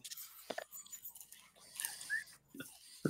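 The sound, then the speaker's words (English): A dog named Butter chews a Rice Krispie treat, with a few scattered crunchy, sticky bites and smacking mouth sounds spread over a few quiet seconds, no one talking. “To give a dog a Rice Krispie treat?”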